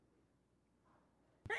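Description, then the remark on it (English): After a stretch of near silence, a single abrupt sneeze bursts out, short and breathy with a bright, hissing edge, standing alone without talk over it. “Bless you.”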